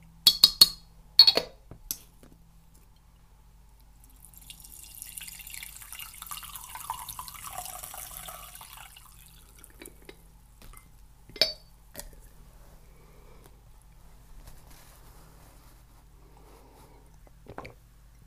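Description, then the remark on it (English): A cup of tea that has been brewing for a while being stirred with a spoon: a quick burst of bright spoon clinks against the cup, then a soft swirling liquid rush that fades, with a couple of isolated clinks later on. “Let's give this a bit of a stir.”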